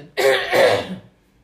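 throat clearing

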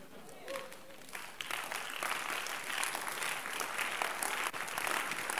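audience clapping

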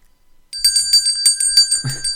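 bell ringing sound effect

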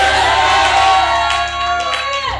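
audience shouting amen

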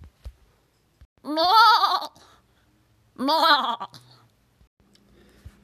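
goat bleating

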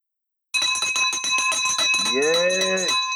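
victory bell ringing

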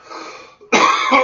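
man coughing

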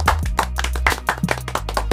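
soundboard clapping sound effect

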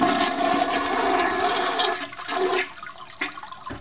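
toilet flushing

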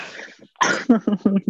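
coughing

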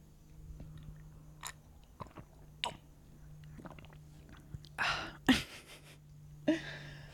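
sipping tea

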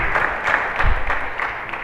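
audience clapping

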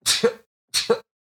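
sneeze

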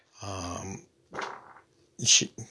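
fart

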